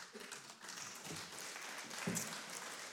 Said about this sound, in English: Oh, that's very cute that you guys are clapping. That's fun.